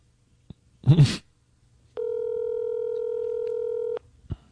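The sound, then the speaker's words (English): An old cell phone, dialing, held up to a microphone gives a brief noisy burst, then a steady electronic phone tone that holds for about two seconds before cutting off. A few faint clicks follow. “This is the old cell phone holding it up to the microphone.”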